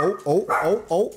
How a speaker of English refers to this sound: Oh, we got a dog. We got a dog. Dog watch on.